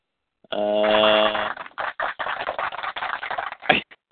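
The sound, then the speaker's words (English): A short sustained tonal sound gives way to a few seconds of loud, uneven applause, with bursts of clapping that swell and pause irregularly before cutting off. “That was applause. I heard that one loud and clear.”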